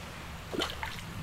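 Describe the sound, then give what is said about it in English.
A coin is thrown into a body of water below, making a single faint plop followed by a softer splash, against a quiet background with no talking. “That's two coins that I've just thrown in there.”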